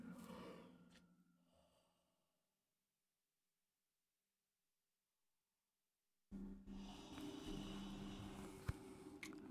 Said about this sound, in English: Now what? There's a thing breathing.